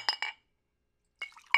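A glass bottle of mezcal clinks: two quick bright clinks, a pause, then a cluster of rattling glass contacts ending in a sharper clink. No talking.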